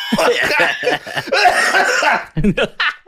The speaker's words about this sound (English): Give me a cigarette. I'll smoke a cigarette right now. Like, coughing.